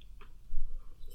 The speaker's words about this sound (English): Sorry, I had to take a drink of water there.